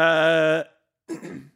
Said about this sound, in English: Excuse me, I'm just burping here.